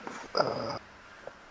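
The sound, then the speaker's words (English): A cat baring its teeth and staying put gives a short, tense growl lasting about half a second, fairly loud, with soft breathy huffs just before it and quiet afterward. “this cat seems something off. Maybe she's in heat.”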